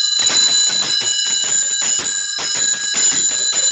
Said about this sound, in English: It's magical with it snowing and the horse is going along and you have, and can I do my sleigh bells now? Yes, we have your sleigh bells going. And that has the low tones.